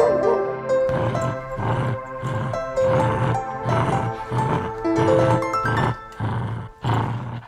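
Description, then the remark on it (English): A dog barks loudly and repeatedly in a steady rhythm, about ten deep, forceful barks in quick succession, with a sustained tonal background like music underneath. “Oh, man, dog, the dog.”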